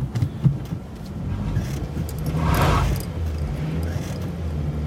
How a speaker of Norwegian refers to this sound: Prøver å vugge med bilen. Ja, kom igjen bilen min. Altså, herregud. Stakkars kløtsj. Det lukter kløtsj over hele skogen.